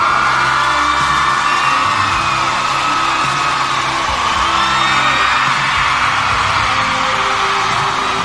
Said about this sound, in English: That was kind of a lame applause all there, ladies and gentlemen. You're going to have to kick it up a notch.